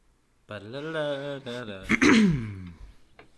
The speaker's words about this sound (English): Sorry, just clearing my throat.